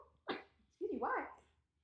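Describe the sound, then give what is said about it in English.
A sharp sneeze bursts out, followed a moment later by a longer, voiced vocal sound that trails off, with faint low background hum throughout. “Because bless you. I was waiting for you to finish.”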